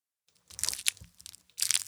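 A bag of Whoppers malted milk balls crinkles and tears open as one of the candies is pushed against the edge of the bag, with two bursts of crisp, crackling plastic separated by a brief quieter moment. No one speaks.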